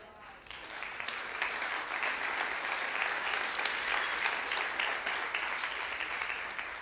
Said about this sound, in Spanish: De 1 a 100, ese aplauso fue como 35. ¿Por qué? Porque esto duele.